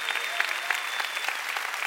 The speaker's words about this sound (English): Come on, give the Lord a big hand.